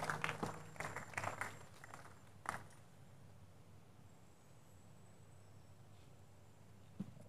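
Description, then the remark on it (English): An audience applauds to give the Lord a clap after prayer, a brief burst of clapping that lasts a couple of seconds, then quickly dies away, leaving quiet with a low steady hum. “Give the Lord a big clap.”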